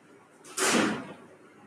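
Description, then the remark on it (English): A single door in a house, with the windows and doors open to air it out, slams shut from the draft with a loud, sharp bang, preceded by a brief whoosh of air, then the noise rings off quickly into quiet. “Sometimes when you open up a window and a door at the same time, here I am back.”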